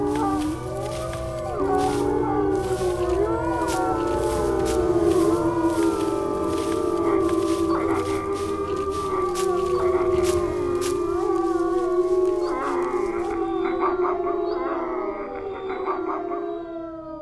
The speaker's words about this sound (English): At her command, Varys and a group of her wolves broke away into the darkness, raising their voices in blood-curdling howls.